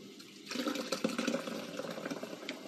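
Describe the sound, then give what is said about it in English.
Cherry-flavored sparkling water pours steadily into a glass, a continuous liquid splash with faint fizzing bubbles, starting after a brief quiet moment and running without any talking. “And then I use just like sparkling water. Right now I'm using cherry flavor because I think that would go nice with the Pepsi.”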